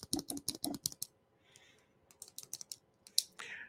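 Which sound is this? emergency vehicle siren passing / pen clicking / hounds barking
pen clicking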